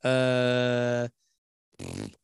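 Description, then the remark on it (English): A loud sneeze: a long, strained voiced build-up lasting about a second, a brief pause, then a short breathy burst to finish. No one talks over it. “Bless you.”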